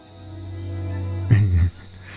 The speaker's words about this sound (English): Come on, you love those jungle noises, don't you?